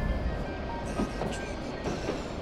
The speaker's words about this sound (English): The junction lies ahead, so if you'll allow me just a moment. Pay no mind to our train's backwards motion, dear traveler. We are now passing through decades of the past.